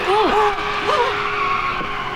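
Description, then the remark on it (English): Car tires pop, then screech and skid in a loud, continuous squeal, the high pitch wavering and bending upward and downward in several arcs over about two seconds, with no crash at the end. “Luckily, it was screeching and not thud at the end. They popped and then skidded, but not skidded.”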